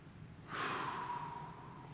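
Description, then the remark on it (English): A single slow, deep breath, taken as part of a guided breathing exercise, starting abruptly after a brief quiet moment and rushing steadily for over a second as it gently tapers off. No talking. “but what we're going to do is we're just going to breathe in for 4 seconds, hold our breath for a couple seconds, and then slowly exhale. Would you do that with me?”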